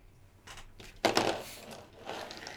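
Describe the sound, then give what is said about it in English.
A ten-sided die clatters and tumbles across a hard tabletop, a few light taps followed by a louder burst of rattling that fades into softer skittering, landing on a 10. No voices. “I rolled a d10 and got a 10.”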